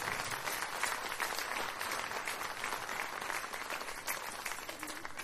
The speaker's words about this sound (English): I think that deserves an applause, don't you? That's amazing.